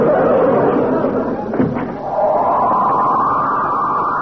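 A door slams shut once partway through, a sharp, heavy bang that cuts through a steady wash of crowd chatter and laughter.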